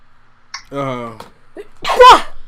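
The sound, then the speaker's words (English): A sharp inhaled buildup followed by a loud, explosive sneeze, with a brief voiced sound just before it. “Bless you. Thank you.”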